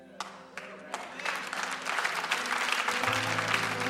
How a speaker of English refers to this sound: Well, I thank you for that little golf clap. Yeah, that's pretty good.